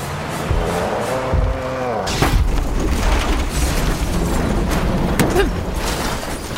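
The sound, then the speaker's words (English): A rising engine drone is cut off by a heavy, booming crash as a truck is hit toward the rear and knocked off the ground onto its side, followed by several seconds of loud rumbling and scraping debris, with another sharp bang near the end. “The impact came towards the rear and knocked the truck completely off the ground and onto its side.”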